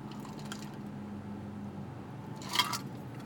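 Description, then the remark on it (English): A single short slurping sip of ice water from a Yeti cup, maybe with a faint rattle of ice, rises briefly over a steady low hum in the background, in a car after a mountain bike ride. No one speaks. “Drink a little bit of ice water.”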